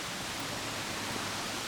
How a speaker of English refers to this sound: Oh yeah, no, here's the waterfall around here. I want to see if it's like any bigger than it was last time. So I feel like it's, I think that there's not much water anymore.